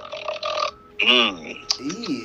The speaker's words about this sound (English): Hold on, I have to burp.